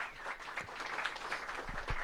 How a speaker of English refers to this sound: Very nice. Yay, round of applause.